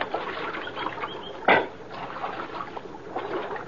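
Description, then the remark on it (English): Water of Little Creek splashes and burbles steadily around noon as riders climb down from their horses to drink, with one sharper, louder splash about halfway through. No one speaks. “About noon, we reached Little Creek, and Falk's trail gave out.”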